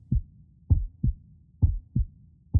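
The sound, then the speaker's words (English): A steady heartbeat thumps in low, muffled lub-dub pairs, about three cycles at a calm resting pace, clear with no voices. “And as you listen to your heartbeat, I want you to think about who lives in your family.”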